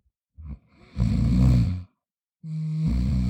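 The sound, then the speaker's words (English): Rough, rumbling snores from behind a closed door, two long drawn-out breaths with a short snort-like sound before them, steady, with a brief pause in between and no talking. “There was no reply except a faint snore.”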